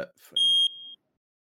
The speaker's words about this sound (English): What on earth is that? We've got a little smoke alarm interlude. Bear with me.